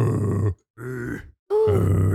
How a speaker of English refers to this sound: Your bong sounds crazy. It sounds like a lion roaring.